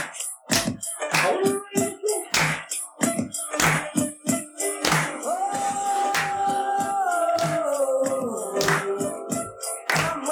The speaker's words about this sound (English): Yes, where's my round of applause?